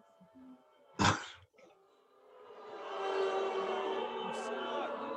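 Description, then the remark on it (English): After a brief sharp burst like a cough, a crowd of voices swells into a sustained, droning boo that holds steady and fairly loud until the end. “Oh, we getting booed off the how was your day?”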